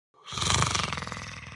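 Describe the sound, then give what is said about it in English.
A low, guttural growl starts abruptly and rumbles on for over a second, loud and raspy, breaking into a rapid pulsing rattle toward the end. No one speaks over it. “I'm curious to see how much we can actually hear the growl.”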